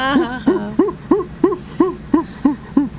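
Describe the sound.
A person imitates a monkey with a quick, steady run of about nine loud, rising "ooh" hoots, each short and throaty, repeated at an even rhythm with no other talking.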